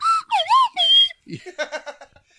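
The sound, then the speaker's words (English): A person whistles an imitation of a sponsor's advertising jingle heard at New York City sports games, a short tune of three sliding, swooping notes, then breaks into a brief burst of rhythmic laughter. “And they have this jingle that I really hate.”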